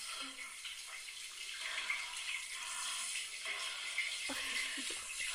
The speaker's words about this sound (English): You're washing your hair over the bath. Okay.